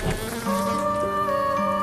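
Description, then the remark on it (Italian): Flies swarming over a corpse in an advanced state of decomposition buzz in a steady, continuous drone, with overlapping whines that shift pitch now and then as they hover and circle. No voices. “Sui resti, un brulichio di larve e mosche.”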